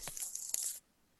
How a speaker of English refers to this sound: Oh, I thought somebody was shuffling a deck of cards.